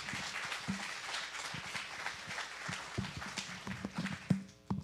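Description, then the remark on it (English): An audience gives a group of people a round of applause, clapping steadily for about five seconds. Many hands make a dense crackle at an even, moderate level, with a few sharper claps standing out near the end. “Can we give these guys a round of applause, please?”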